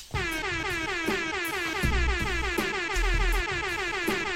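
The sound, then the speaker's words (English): Loud air horn sound effect played on the show Wicked 101, blaring in rapid, repeated blasts that run together into one continuous brassy wail, alone with no talking over it. “I had to go crazy on the air horns, man.”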